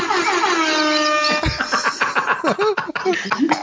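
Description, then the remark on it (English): A loud, blaring air horn sound effect plays from a small Alexa smart speaker for about a second and a half, then gives way to busy, choppy bursts of voice-like noise. “Well, I got my wife an air horn, Alexa, for Christmas, and now she's playing. Alexa. She found the air horn feature.”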